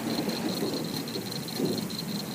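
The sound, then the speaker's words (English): Steady rain falls in a continuous, even hiss at moderate volume, watched from a porch, with a faint high-pitched whine running through it and no voices. “We're just sitting here watching it rain and talking about Louisiana.”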